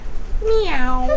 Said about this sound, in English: Meow.